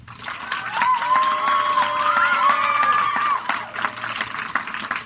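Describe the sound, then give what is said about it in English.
An audience claps and cheers loudly to vote that Harry will walk out of the book alive, a dense wash of applause with high shouts and whoops rising above it before tapering off slightly near the end. “If you think he will, clap.”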